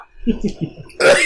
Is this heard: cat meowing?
no